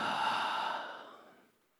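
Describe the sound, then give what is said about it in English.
A single deep, airy breath in and out, fairly loud at first, then trailing off softly like a long sigh over under two seconds, with no talking. “I want everyone to take a deep breath. Breathe in. Now breathe out.”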